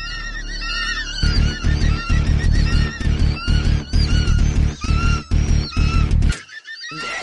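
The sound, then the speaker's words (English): Loud, frantic honking from several birds, overlapping in harsh repeated calls over rhythmic low thumps and flurries of commotion, before cutting off abruptly near the end. “Why would birds do something like that? I mean, why would they just attack?”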